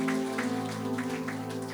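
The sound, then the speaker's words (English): A crowd claps steadily in a dense patter of many hands for a man who comes forward to Jesus, with a sustained low musical tone held underneath throughout. “Let's give him a round of applause as he comes to Jesus.”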